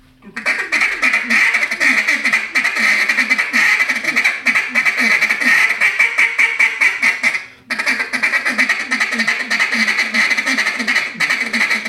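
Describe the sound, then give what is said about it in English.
A duck call blown in a rapid, continuous mallard chatter, loud, with dense quacking pulses running for about seven seconds, a brief pause, then another fast burst. “That's mallard duck right there, baby.”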